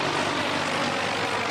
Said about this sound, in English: The display featured Apache helicopters speeding overhead, while bigger Black Hawk choppers carried highly trained operatives as part of a make-believe invasion.